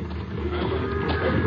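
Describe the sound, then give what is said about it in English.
A herd of cattle being driven into stock pens near a railroad siding at the end of a ranch roundup, lowing and bellowing together, a dense, steady wash of overlapping moos at moderate loudness with no one speaking. “Last the herd was being driven into the stock pens near the railroad siding when we reached the south end of the ranch.”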